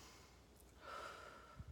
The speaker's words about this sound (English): to start out by doing this new cool thing. It's called breathing.